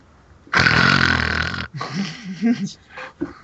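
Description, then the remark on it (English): A single loud, harsh snore-like rasp lasting about a second, likely a person imitating a snore, followed by animated voices and breathy sounds. “14 and 15-year-old boys do not snore.”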